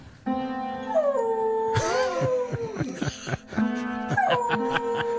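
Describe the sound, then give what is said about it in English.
A beagle plays a piano and howls along in long, wavering, sliding tones over a jumble of struck piano notes, with a loud clattering burst of keys partway through. Loud, no talking. “Do we still have the audio of a beagle playing a piano and howling along?”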